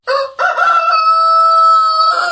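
A rooster crows loudly, a short opening note followed by a long, drawn-out cock-a-doodle-doo that holds steady before tailing off.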